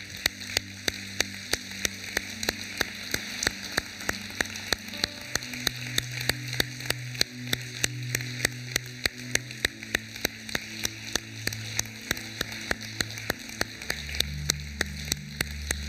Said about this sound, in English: If you're one of the family of one of these young people, would you please stand right now? Let's give them a applause.